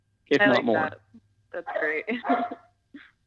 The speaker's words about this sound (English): Oh, we're getting a dog appearance. I like there's it. Dog. Yeah. That was Crypto.